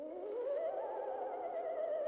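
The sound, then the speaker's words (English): An eerie ghost sound effect for Halloween: a steady, wavering moan that slides upward in pitch with a shaky vibrato, loud, running unbroken for about two seconds with no talking. “This is a ghost.”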